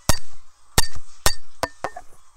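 Five sharp glassy clinks ring out at uneven intervals, a microphone hitting against a drinking glass, each strike bright and leaving a short resonant ring.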